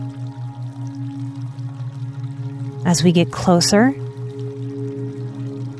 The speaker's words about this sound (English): the sounds of water moving and flowing get louder, telling us that we're heading in the right direction. As our eyes start to make out the edges of the babbling brook flowing out of and down the mountainside.